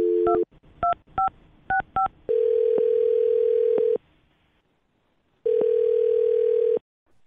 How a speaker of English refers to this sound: Well, I'm going to dial this phone up right now and see if we can figure it out for you, okay?